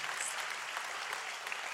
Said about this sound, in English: There ought to be more than four hand claps for that. This is not golf. This is not golf clap time.